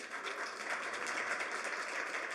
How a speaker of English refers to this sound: All right, now, by a round of applause, right here. Right here.